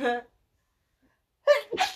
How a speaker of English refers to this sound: oh my god, I have to sneeze again, hold on.